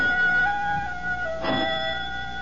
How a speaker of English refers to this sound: Only the doorbell. But no one comes here unless her father is present, and seldom then. Would Papa want her to answer?